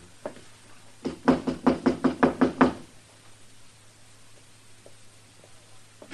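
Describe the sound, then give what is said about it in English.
A quick, steady run of about nine firm, fairly loud knocks on the door of room number 9, followed by quiet room tone with a low hum and no talking. “Go ahead, Temple. Knock.”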